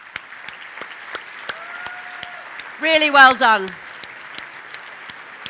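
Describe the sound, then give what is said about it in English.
Steady audience applause at an awards event for the quality team at Volca Rail fills the whole clip, a dense crackle of many hands clapping at even loudness, while a voice briefly speaks over it midway. “So before we announce our winner, I would like to ask you all to give a huge round of applause to the quality team at Volca Rail.”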